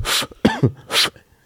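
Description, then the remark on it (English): A loud bout of coughing mixed with throaty clearing: three quick harsh bursts, the middle one rough and voiced, then quiet. No one speaks. “And I have a cough.”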